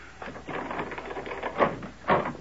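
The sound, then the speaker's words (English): A door being opened: a quick run of small mechanical clicks and rattles from the latch, followed by two firmer clunks as it swings open. No one speaks. “I'll get the door”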